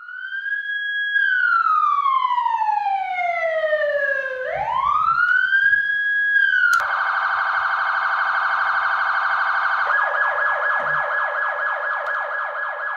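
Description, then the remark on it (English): A loud police siren, not a real one, wails with a long falling-and-rising sweep, then switches to a steady high tone and finally a rapid pulsing yelp, with no voices. “The sirens you are about to hear are not real.”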